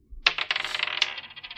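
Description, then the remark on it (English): Dice rolled during a tabletop card game clatter across a hard tabletop, a sharp rattle of quick clicks that tumbles on for about a second before settling, with no voices. The roll is an attempt to run away in the game. “All right, well, I'm going to lose a level and start running away. Come here, dice.”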